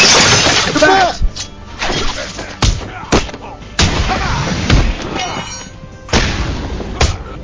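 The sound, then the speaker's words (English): Video game brawl effects from a fight in Batman: Arkham Asylum, with Batman beating up a group of men: a string of loud, sharp punches and body thuds, about seven hits at irregular intervals, over a dense, noisy background with a brief vocal grunt near the start. “Simple enough, I sampled one of the fights from Arkham Asylum where Batman beats the crap out of a bunch of guys, and it was incredibly evocative for a radio play.”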